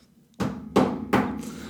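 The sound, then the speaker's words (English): Three solid knocks on wood, a fairly loud, evenly spaced triple rap where each hollow thud rings briefly before the next, with no voices. “I'm going to knock on wood real quick.”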